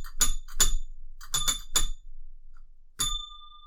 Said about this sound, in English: I've never been able to ring the spoiler bell. Right, okay. It's never been my honour.